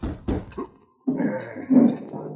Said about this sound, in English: Roy Dana was just finishing his midday meal in his cabin on Keeno Creek when he heard a knock at the door.